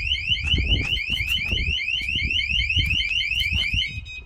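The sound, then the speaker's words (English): A van alarm blares with rapid, repeating rising electronic whoops, loud, over rumbling low background noise, cutting off abruptly near the end. “So what you do is you close your van doors, but you don't lock them, you set your alarm. As soon as they open your door, the alarm triggers.”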